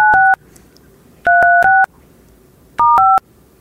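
Three quick bursts of telephone keypad beeps as a phone number is dialed, each a rapid run of steady dual-tone presses, separated by short pauses over a faint background hum.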